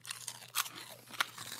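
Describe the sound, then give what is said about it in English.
Crunching and chewing of a hard dog treat, with sharp crackly bites at irregular intervals, two louder crunches standing out over a steady softer grinding, no talking. “One, two, three. Dog treat.”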